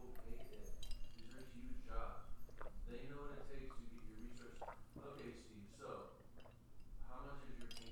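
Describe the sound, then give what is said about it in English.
Shot glasses clink together a couple of times in a quick toast before a second round of shots, the bright taps partly buried under steady overlapping voices and background chatter. “Shot number dose. Here we go. Cheers.”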